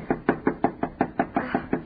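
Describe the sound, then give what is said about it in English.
A rapid, steady series of about nine hard knocks on the door of a house, forceful, each thud evenly spaced with no voices in between. “Knock harder.”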